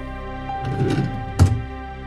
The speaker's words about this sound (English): Gun in drawer. Drawer closed.